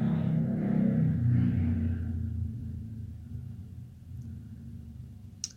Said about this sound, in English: And then a motorbike went past in the distance.